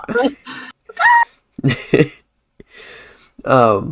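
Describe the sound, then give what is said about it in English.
A person's voice imitates a chicken with a string of short, choppy clucks and bawks, separated by brief pauses, ending in a louder, drawn-out squawk. “Sound like a chicken for a second.”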